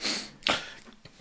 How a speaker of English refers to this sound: Wait. I gotta sniff them first.